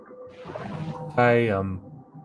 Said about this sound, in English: That's the boat.